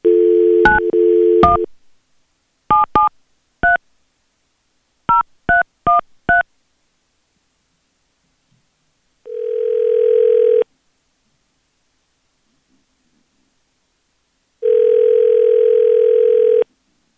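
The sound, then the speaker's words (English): A brief dial tone gives way to a quick, uneven run of about ten touch-tone dialing beeps, followed by two long, low ringing tones separated by silence, as radio station B93.7 calls a woman live on air for its second date update segment. No one speaks. “We're going to go ahead and call her.”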